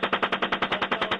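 A rapid burst of machine gun fire from a US military helicopter crew shooting a group of Iraqis in Iraq, roughly a dozen evenly spaced heavy shots in just over a second, loud and steady with no voices.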